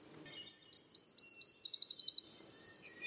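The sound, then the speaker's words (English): A tiny Nashville warbler sings alone, clear, as it flies to its nest with a caterpillar in its beak: a run of high, sweet paired notes that speeds into a quick, bright trill, then ends with a thin fading whistle. “A tiny Nashville warbler flies to its nest, a fat caterpillar clamped in its beak.”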